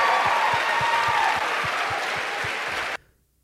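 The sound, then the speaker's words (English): A crowd of supporters claps loudly and steadily for about three seconds, a regular low thumping beat running beneath the dense applause, before the sound cuts off abruptly. “About the people that are clapping?”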